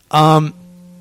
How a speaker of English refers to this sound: We got a phone call. Yeah. Phone call.